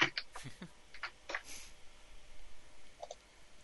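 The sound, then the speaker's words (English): Rapid, irregular clatter on a computer keyboard from frantic typing while someone looks things up on Wikipedia. A burst of quick keystrokes slows and then trails off into a few scattered taps. Fairly quiet, with no talking. “While you frantically are typing, shall I attempt a link?”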